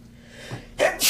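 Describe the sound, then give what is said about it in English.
A single sneeze: a brief indrawn breath followed by a sharp, loud burst of breathy noise, then a short forceful exhale at the end, with no talking. “Bless you.”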